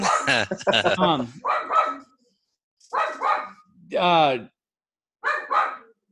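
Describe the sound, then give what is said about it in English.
A dog barks in several separate bursts, some quick doubled yaps and a longer drawn-out bark, fairly loud with short pauses between them. “See, even the dog's pissed off about this.”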